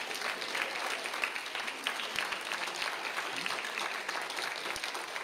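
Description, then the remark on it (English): An audience claps for their mothers, steadily for several seconds, a dense, continuous patter of many hands at an even, moderate loudness with no voices on top. “Somebody need to clap for their mama right now.”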